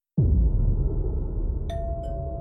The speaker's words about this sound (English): On the morning of July 18, 1989, Robert John Bardo rang the doorbell outside of Rebecca Schaefer's apartment.